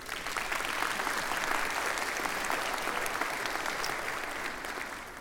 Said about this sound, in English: Good-looking group. Give them a round of applause, huh?